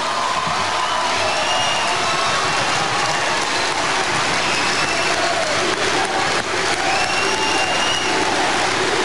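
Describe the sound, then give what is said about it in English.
A large crowd at the Abyssinian Baptist Church in Harlem, New York, applauds loudly and steadily as Fidel Castro is introduced: a dense, rain-like wash of clapping with cheers and whistles rising above it throughout, no break in the ovation. “And the crowd goes wild.”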